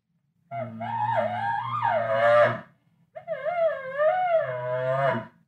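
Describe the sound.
Two drawn-out bull elk moans blown very lightly on a latex diaphragm call, each about two seconds, with a wavering, rising and falling whine over a low throaty drone. No talking.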